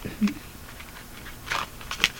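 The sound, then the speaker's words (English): Playing cards being shuffled: a few short, crisp, papery rustles and flicks spaced irregularly, fairly quiet, with no voices. “Yeah, now we mix the cards again, shuffle or whatnot, mix the cards.”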